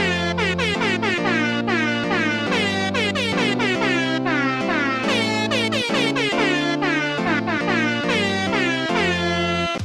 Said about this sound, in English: But surely, by now, someone somewhere in the world has scored a goal. So here is some festive air horn.